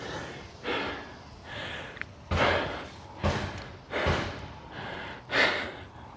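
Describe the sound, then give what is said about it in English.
A series of muffled hammer blows, about seven strikes at an uneven pace, each a dull bang with a short echoing tail, heard alone against a faint background hiss: a neighbour next door hammering out a dent in his garage. “So I think that's him hammering out the dent in the garage.”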